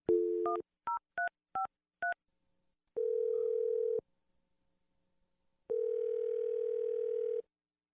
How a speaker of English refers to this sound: So let's dial the phone number and call your girlfriend's mom for you. Here we go.